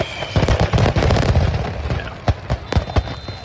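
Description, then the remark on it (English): An entire fireworks show going off all at once on a beach in broad daylight at 10 a.m., the whole show going up in about 30 seconds: loud overlapping booms and crackles packed together, then thinning into scattered sharp bangs. A lifeguard's faint high whistle runs through the later part. “The whole show went up in about 30 seconds.”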